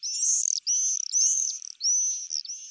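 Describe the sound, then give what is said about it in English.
Swifts screaming: four shrill, buzzy screeches in quick succession, each about half a second long, loud with no other sounds around them. “The enthusiasm stretches from the red-breasted robins whose image adorns Christmas cards, to the fighter jet-like swifts whose screams herald the start of summer.”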